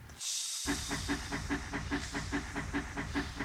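steam locomotive hissing

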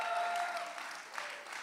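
audience applause and cheering

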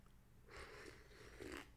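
sipping coffee

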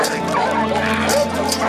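dog barking and whimpering

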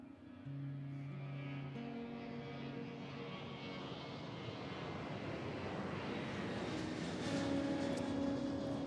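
airplane flying overhead

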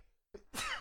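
sneeze

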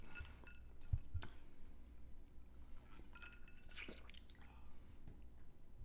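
ice cubes clinking

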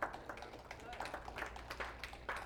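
audience clapping

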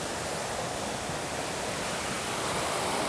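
flowing creek water

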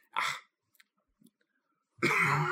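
cough and throat clearing

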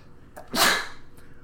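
sneeze

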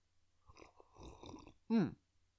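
sipping coffee

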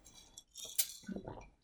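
wine glasses clinking

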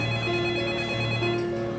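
school bell ringing

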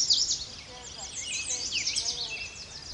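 american robin song

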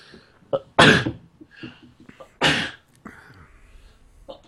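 repeated sneezing

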